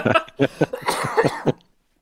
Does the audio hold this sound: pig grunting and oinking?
no